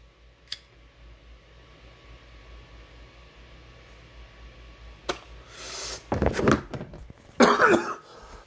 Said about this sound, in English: I'll give you the cough. I think somebody wanted to hear it. Other people don't. So whatever. I'm just going to do it. All right. I'm going to leave you guys with that weed cough.